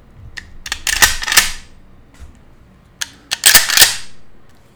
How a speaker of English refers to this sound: And on the left side of the gun, it's got three ducks taken off from the water. So really pretty gun. I'm gonna rack the slide for you.